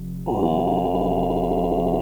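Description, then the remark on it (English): A voice imitates the constant low drone of a film's music, holding one unchanging buzzy note for about two seconds with no words spoken. “Just like stretching a constant drone of just...”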